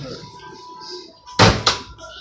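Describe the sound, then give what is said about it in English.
A door is pushed shut with two quick, loud thuds in close succession, the second like the latch catching, following a stretch of quiet room murmur. “Bro, you never closed the door right.”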